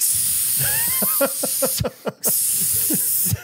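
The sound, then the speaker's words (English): A voice imitates hissing sauna steam being pumped into a room: a long, loud, breathy hiss that cuts out briefly twice near the middle before carrying on, with faint voiced murmurs mixed underneath. “And there's just so much steam is being pumped in this room.”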